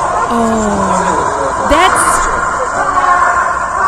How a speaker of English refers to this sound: That's a scream that comes from your inner soul. That is a gut scream.